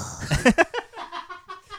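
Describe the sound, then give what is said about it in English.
A person vocally imitates being punched in the gut: a loud, strained grunting burst followed by a string of fainter, breathy wheezing gasps that trail off. “That's what it sounds like when I get a gut punch.”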